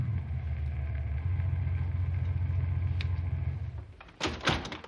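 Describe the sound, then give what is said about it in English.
A car's low engine rumble drones steadily, then eases off and fades as the car cuts its speed and coasts up to a house, rolling to a stop, followed by a couple of sharp door-like clunks. “Cut the speed of your car and coast up to the house.”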